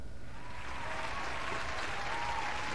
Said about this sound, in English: Oh wow, it's our live studio audience. How long does the applause sound effect go on for? That's enough.